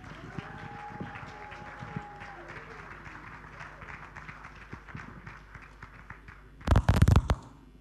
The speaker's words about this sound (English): Ladies and gentlemen, make your applause loud for ….